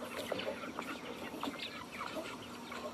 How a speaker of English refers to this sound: Good morning, meat birds.